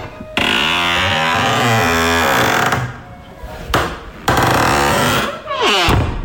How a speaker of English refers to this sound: Someone's just walked in the door. Listen to this. Is that your door? Who could that be? That is brilliant. I just sampled it.